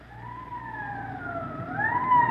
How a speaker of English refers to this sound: Code 3, that means red light and siren.